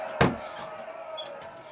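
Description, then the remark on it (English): A single heavy door slams shut with a sharp, booming thud near the start, followed by a lingering resonant echo. No one speaks. “Seal those doors.”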